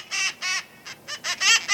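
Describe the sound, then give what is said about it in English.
A cherry-headed conure gives a quick series of about seven harsh, raspy screeches, loud, in short uneven bursts with brief gaps between them. No one speaks. “Sadly, wild cherry-headed conures are falling ill from rodent poison.”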